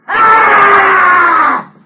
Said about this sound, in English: A wild, hoarse scream.